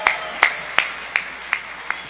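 Church audience applause for the worship team: a steady hiss of clapping with six sharp, evenly spaced claps standing out on top, each a little softer than the last. No one speaks.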